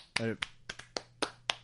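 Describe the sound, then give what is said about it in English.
A handful of slow, unevenly spaced hand claps, about seven sharp slaps in under two seconds, with a brief voiced sound at the start. “A sarcastic applause.”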